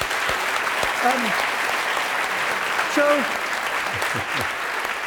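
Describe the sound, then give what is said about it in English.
Sustained applause from an audience, a dense steady wash of many hands clapping at an even loudness, with a few brief murmured voices and tonal blips surfacing through the noise. “So I guess I'd like to propose with that we should all clap one more time.”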